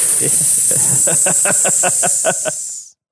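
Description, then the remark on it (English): Someone imitates a hiss with their voice: a steady, loud, sharp hissing held for about three seconds, with a run of rapid rhythmic throaty pulses underneath before it cuts off. “Oh, man, that hissing was really, really kind of terrifying.”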